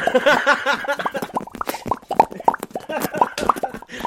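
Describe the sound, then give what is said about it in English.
A voice imitates popcorn popping with a rapid, irregular flurry of wet mouth pops and clicks, fairly loud and dense, opening with a brief voiced, throaty tone under the first pops. “You're really outdoing yourself with the noise mouth sound.”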